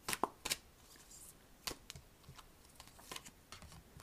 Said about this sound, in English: Today's card reading comes from the Wisdom of the Oracle deck by Colette Baron-Reed. I'm going to go ahead and shuffle the cards now, and let's just see what messages the angels have to say to us for this week.